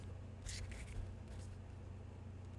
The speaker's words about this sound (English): These are very thick cards. I can't really. Hold on. You can't really shuffle them like you would like a regular deck of cards. But I'll try. Because there's 72 of them, you know.